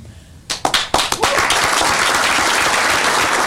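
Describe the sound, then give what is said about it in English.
After a quiet moment, a few sharp, separate claps break out, then quickly swell into loud, dense audience applause that sounds right up against the microphone and keeps going steadily. “The clapping drives me crazy. It's so close to the microphone.”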